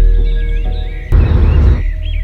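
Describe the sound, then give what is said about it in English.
A single harsh, raspy crow caw bursts out midway, loud and rough over a steady low hum and faint tonal background. “Just above Christian's head, a crow caws, frightening him and Hannah once again.”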